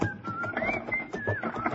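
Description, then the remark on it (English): A person whistles a cheerful, gliding tune while loading a wagon at dawn under a cloudless sky, notes rising and falling, heard at moderate volume over a busy background of low rumbling and scattered clatter. “whistled cheerfully as we loaded the wagon”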